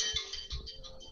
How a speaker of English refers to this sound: My phone is ringing. Sorry, I didn't turn it up. Hold on.